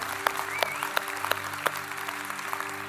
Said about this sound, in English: Come on, let's clap for everybody. Come on, really clap for people that said yes today.